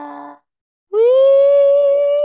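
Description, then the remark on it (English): Gojira, the giant movie monster, roars as it appears from a cracked-open iceberg: a short harmonic blast, a brief silence, then a long, loud, screeching bellow that rises slightly in pitch and holds steady, bright and rasping with rich overtones. “And then the iceberg cracks open, and at 26 minutes and 17 seconds, Gojira appears and roars.”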